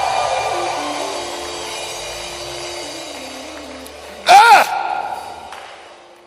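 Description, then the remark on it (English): A church audience screams together at a preacher's urging in a sustained, reverberant roar of many voices, and one loud, rising shriek bursts out briefly near the end before the crowd noise tapers off. “Somebody come on, scream like your voice is yours and press.”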